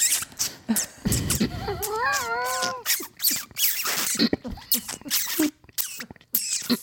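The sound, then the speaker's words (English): A comedian's voice mimics a car door opening as a sound effect: a short rough whoosh, then a wavering high-pitched creak lasting about a second, followed by lively chatter. “And I opened my car door.”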